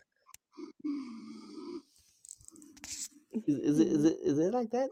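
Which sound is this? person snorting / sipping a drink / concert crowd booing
person snorting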